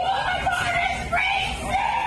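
A man screams in one long, strained, wavering cry that holds steady for about two seconds, loud and close, with the pitch sliding up and down and no other sounds around it.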